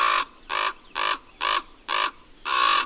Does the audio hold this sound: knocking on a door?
no